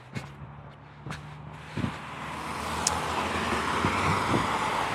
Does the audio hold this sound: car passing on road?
yes